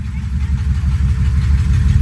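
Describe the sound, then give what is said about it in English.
The diesel engine of a military Humvee rumbles loudly, a deep, throbbing low-pitched drone with a steady chugging pulse that holds constant throughout, with no voices. “And I hear it before I see it, a diesel engine. Then a military Humvee appears.”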